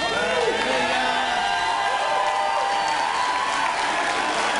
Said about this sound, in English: So can somebody in this room, can you stand up right now and give a cheer for God?